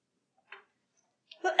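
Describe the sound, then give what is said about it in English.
A single abrupt, fairly loud sneeze bursts out at the end after mostly quiet, preceded by a faint click and a short inhaled catch. “Bless you.”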